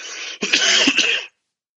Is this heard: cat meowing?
no